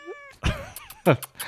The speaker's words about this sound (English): Come here, gorgeous. This is the official mascot. Oh, here's Bitzaroo. I'm sure we'll get a meow. Bitzaroo.